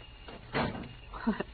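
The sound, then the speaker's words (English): A door eases shut with a soft, muffled thud as someone comes in, followed by faint creaks and shuffling. Low and restrained, with no slam. “You didn't slam the door when you came in that time.”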